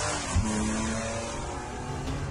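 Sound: car engine revving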